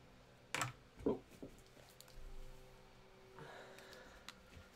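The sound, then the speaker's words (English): Quiet typing on a computer keyboard: a handful of irregular key clicks, a couple slightly louder, over a low steady background hum with no voices. “is typing.”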